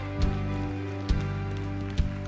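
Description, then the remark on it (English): A church audience at a morning worship service at Stevens Creek Church claps hands in time to praise Jesus, three sharp, evenly spaced claps about a second apart over a steady, sustained musical drone. No one speaks. “Hey, let's put our hands together and praise Jesus this morning.”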